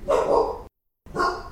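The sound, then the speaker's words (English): A dog barks twice, loud, with a short silent pause between the two sharp, full-bodied barks, around 5:30 in the morning. “My dog was barking, and that's what woke me up.”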